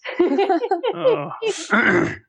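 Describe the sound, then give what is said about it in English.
A fairly loud throat clearing, with a few rough voiced rasps over about two seconds. It has a groan-like, grunting quality. “No, I was just clearing my throat.”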